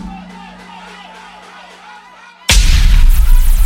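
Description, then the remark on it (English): A steady droning tone with faint rhythmic pulses gives way to a single sudden, loud gunshot sound effect whose booming, noisy blast rings on to the end. “From you this, my friend, a gunshot.”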